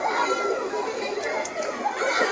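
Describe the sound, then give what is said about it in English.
A busy crowd of children chattering and calling out together, a dense overlapping babble of young voices at steady volume, with no single clear speaker. “Children.”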